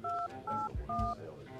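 Three short, steady phone keypad beeps in quick succession as someone dials a man's cell phone, each a clear two-note dialing tone, with faint soft thumps between presses and a low background murmur.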